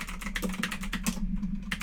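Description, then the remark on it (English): Rapid mechanical keyboard typing, a quick run of crisp clicks with a steady low hum underneath, pausing briefly near the end before one more keystroke. “My mechanical keyboard, listen to that.”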